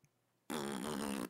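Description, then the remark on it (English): A voice imitates a loud fart with a sudden, buzzing raspberry that starts abruptly and holds steady for under a second, forceful, after a brief quiet moment. “Can you reenact the type of fart it was? Like with your mouth?”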